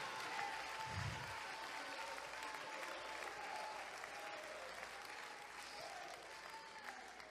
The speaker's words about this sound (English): I think you ought to clap your hands.